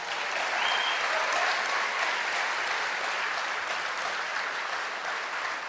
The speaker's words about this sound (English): Everyone give her a round of applause.